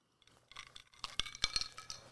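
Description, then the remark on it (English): Ice cubes clink and rattle in a glass of gin on the rocks in a quick series of bright, high, sharp taps, with no talking. “And as you can hear, we are drinking it on the rocks to keep it nice and cold.”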